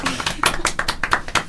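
A quick run of about nine sharp hand claps in a steady, fast rhythm, bright and fairly loud, with no talking over them.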